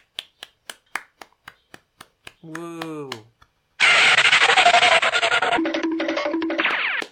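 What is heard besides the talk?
one person clapping hands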